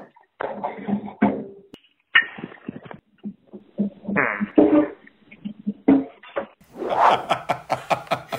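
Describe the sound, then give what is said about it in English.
A squeaky fart, caught on a pocket-dialed phone call while someone was cleaning the kitchen and doing the dishes. It is a run of sputtering, reedy bursts that rise and fall in pitch, with short gaps between them, fairly loud and with no talking over it. “That is a squeaky fart.”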